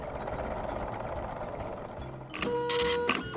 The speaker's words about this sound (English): That's good, because I hear the Math-O-Matic machine firing up in the next room, which means it's almost time for our first question.